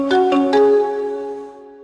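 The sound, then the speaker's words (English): Intel's audio logo: three quick, bright struck notes, bell- and marimba-like, ring out and blend into a sustained chiming chord that slowly fades. No one speaks. It opens with a sparkle of over 20 sounds, including tambourine, anvil, electric spark and a hammer on a pipe, followed by notes mixing xylophone, marimba and bells. “The first tone is an audio sparkle made up of more than 20 sounds, including a tambourine, an anvil, an electric spark, and a hammer on a pipe.”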